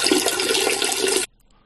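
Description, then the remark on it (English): A toilet flushes with a loud, steady rush of water for just over a second, then cuts off abruptly into near silence. “Don't flush wet wipes down toilets.”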